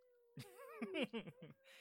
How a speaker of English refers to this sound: Then out of nowhere, meow.